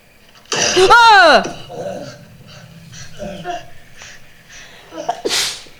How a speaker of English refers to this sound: That scared the sneeze out of me.